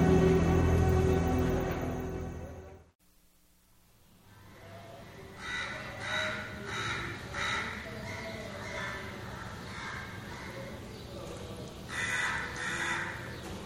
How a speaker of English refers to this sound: This country certainly has a lot of crows. Good morning, crows.